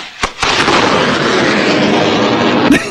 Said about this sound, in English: That's what the explosion in your backyard looks like. Because there's like fireworks coming off of it. Sparks flying, a big cloud of debris.